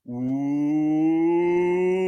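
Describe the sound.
A single loud voice holds a long drawn-out "woooo" yell, the opening of a "woo pig sooie" hog call for the Hogs, its pitch slowly rising over about two seconds with no other talk.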